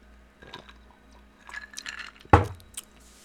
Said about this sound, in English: All right, Let's take another drink, and then we're going to get into the running backs.